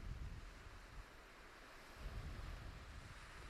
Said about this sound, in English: It is a little bit too cold, or too cool. It's not really cold, it's just cool to go swimming, and the waves are a bit too active.